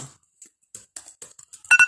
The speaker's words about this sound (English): Hang on a second, y'all. Excuse me with my alarm.